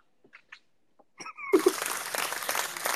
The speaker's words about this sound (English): Yo, gives himself a clap. Oh, All right, no more sandboarding. No more soundboarding. It's like waterboarding.